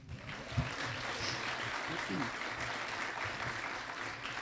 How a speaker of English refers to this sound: We are absolutely delighted to welcome, and I want applause here, as of this week, for the first time, New York Times best-selling author Liz Moore.